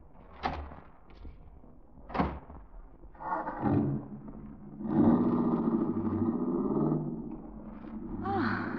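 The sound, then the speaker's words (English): Two solid car door thunks land a couple of seconds apart, then the engine of a car parked out front starts and settles into a steady, rumbling idle that carries to the end, moderately loud. “My car is right out front.”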